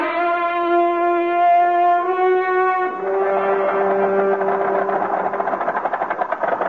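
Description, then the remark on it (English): A car engine hums steadily, then its pitch steps up as it revs and pulls away, the tone growing rougher and rapidly pulsing toward the end. Fairly loud, with no voices. “Now we'd better get in the car and move on for safer climbs.”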